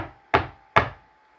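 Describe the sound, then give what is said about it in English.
Two heavy, resonant knocks on the huge old wooden door of a castle at night, evenly spaced, each with a sharp thud and a short booming decay, with no voices. “They arrive at the castle and the driver drops Jonathan off, who knocks on the huge old door.”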